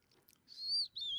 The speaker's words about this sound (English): I know, I can hear the birds.